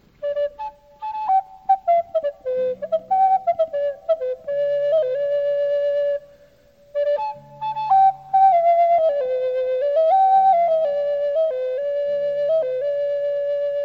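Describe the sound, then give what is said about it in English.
The Irish folk tune Drimmer's Cow, a song about a dead cow, played on instruments, a bright wavering melody over lower held accompanying notes, pausing briefly midway before carrying on steadily. No voices. “There's one special song we could sing that started out in Ireland where it sounded like this.”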